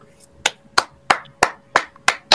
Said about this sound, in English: All I can do is fucking clap. Wow.